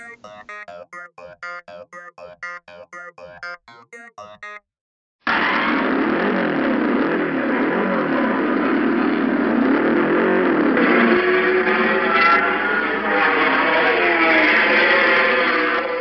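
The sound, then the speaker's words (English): After a few seconds of short tonal beeping and a brief pause, a car engine bursts to life, revving loudly with rising and falling pitch for about ten seconds. “The sound of an engine starting up, getting in with our families to head off for a day at the beach or at an amusement park, or even riding in comfort by ourselves to and from our offices”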